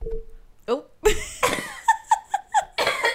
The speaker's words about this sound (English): I just had to cough. Oh, I'm sorry. You're still getting over that. That's the tail end of that cold that you got. It's lingering, but I feel like I sound better.